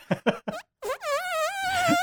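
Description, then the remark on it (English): A voice makes three quick sputtering pops, then a long, high, wavering squeal, imitating a wet, squeaky fart. “You know, like when it's a really wet, squeaky fart, just like comes out in fear.”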